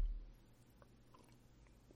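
sipping coffee

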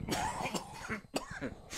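cough

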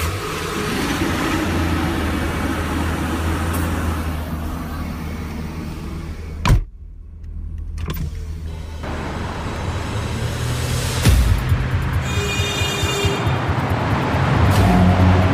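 pickup truck engine starting

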